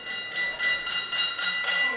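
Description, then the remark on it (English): An OVW wrestling ring bell rung rapidly by a senator's young son, about six bright metallic clangs in quick, even succession, their high ringing tones overlapping and sustaining throughout, with no voices. “And that is the senator's little boy ringing the OVW bell.”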